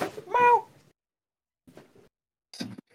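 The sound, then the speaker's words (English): A pet cat meows loudly, a short tonal cry, followed after a pause by a couple of softer, brief vocal sounds amid otherwise quiet surroundings. “My cat, I'm sorry, it's just my cat.”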